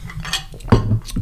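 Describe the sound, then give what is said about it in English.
A glass clinks lightly a few times, then a short sip and swallow follow. The sounds are brief and moderately loud, with no talking. “Take a sip of water.”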